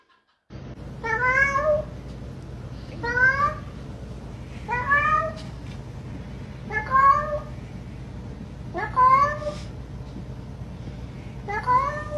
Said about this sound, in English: Listen to it now, knowing what we know about this racist cat.